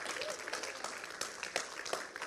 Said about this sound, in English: Everyone, big round of applause, please. Go. Clap. Come on. A bit louder than that.